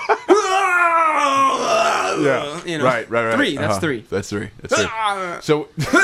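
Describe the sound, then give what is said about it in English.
A loud, drawn-out pained groan from someone doing a thigh rocker exercise rises and strains for over a second, followed by a run of choppy, strained vocal sounds and grunts, fairly loud. “Well, no, I was just, you know, it hurts so much when I was doing the thigh rocker. So it was an actual scream.”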